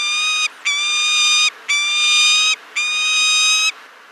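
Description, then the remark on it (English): A kestrel gives four drawn-out, shrill ki-ki-ki alarm cries in steady succession, each a loud, reedy, harmonic note with brief gaps between, and no talking over them. “They also have a characteristic cry, a kind of ki-ki-ki-ki as an alarm, a warning sound, or that the male is announcing his arrival to the nest to feed the female or the chicks.”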